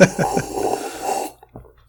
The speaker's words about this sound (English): I've got two glasses here, so you and I can't cheers, but I'm going to finish my rum and coke. Hold on. I'm going to sip, and it might be obnoxiously loud, so I apologize.